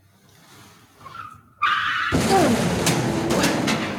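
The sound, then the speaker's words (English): The drummer's old car skids with a brief tire squeal, then repeatedly slams into an industrial-sized dumpster, setting off a loud, sustained crunching, scraping metallic roar punctuated by a few sharp bangs near the end. No one speaks. “That was someone repeatedly crashing their car into something. Can't remember who. Industrial sized dumpster.”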